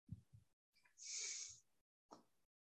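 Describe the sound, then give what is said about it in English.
Someone blows their nose while unmuted: a couple of short sniffs, then a long, loud, honking blow with a hissy rush of air, followed by a final brief snort. No talking. “I was muted to blow my nose, and I did it unmute.”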